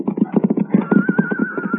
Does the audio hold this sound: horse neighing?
yes